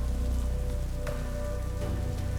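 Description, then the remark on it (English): Steady rain from a storm pours down in a dense, continuous hiss with a low rumbling undertone and a few sharper splashes, no voices present. “She was relieved to hear the storm instead of the scream that she thought she had heard.”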